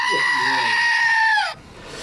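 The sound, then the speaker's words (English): A loud, shrill screaming goat sound effect held for about a second and a half, harsh and strained with a slight downward bend, then cutting off abruptly into quiet room tone. “Is it time for the screaming goat?”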